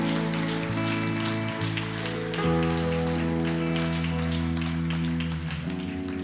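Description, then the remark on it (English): A church audience applauds the performers steadily, a dense crackle of clapping that holds for several seconds over sustained keyboard chords that shift partway through. “Why don't you give these guys an incredible round of applause?”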